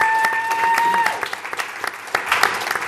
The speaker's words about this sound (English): So if anyone deserves applause, it's this guy.